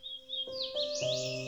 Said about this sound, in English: later study to find out what birds may be singing here when no one is around to listen. I'll be returning to Spooky Hollow a few more times this month to move the recording devices around and to get a sense of what birds are breeding here this year.